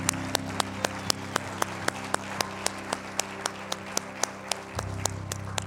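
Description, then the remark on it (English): An audience claps together in a steady, even rhythm as a clap offering to God during a morning worship service, sharp distinct claps over a dense layer of scattered applause, sustained throughout with a low hum underneath. “Let's give God a clap offering for what he's doing here this morning.”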